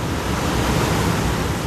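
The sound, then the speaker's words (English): Steady, loud rush of water flowing through stainless steel canals in a giant carrot-processing plant, carrying carrots around; a dense continuous wash with no pauses or distinct splashes, and no voices. “This whole time, the carrots are being moved around the giant plant by gallons of water flowing through an intricate system of stainless steel canals.”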